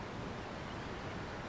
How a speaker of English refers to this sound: She sways softly in time with the familiar sound of the waves, and imagines what it'll be like when she lives under them.